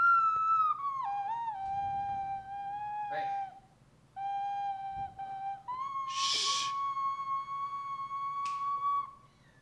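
A female cat lets out long, drawn-out yowling meows, steady and high-pitched, nearly continuous with one short break, accompanied by a brief breathy hiss partway through. No one speaks.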